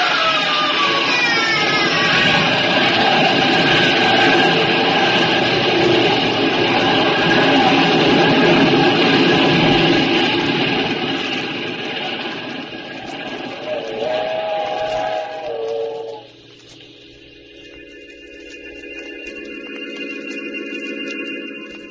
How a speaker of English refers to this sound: When the train had passed, I saw what was left of his body on the tracks.